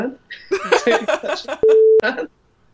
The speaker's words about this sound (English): Okay, I will beep that out. Every time I say you should, I'll beep it out. I don't know why the beeps are so funny.